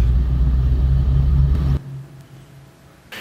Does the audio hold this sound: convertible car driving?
yes